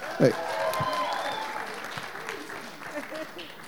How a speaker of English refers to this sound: Well, we will do a few more, since my wife said so. Everybody give her a hand clap.